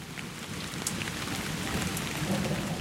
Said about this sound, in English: Oh, I can do this, actually. That is fresh rain smell.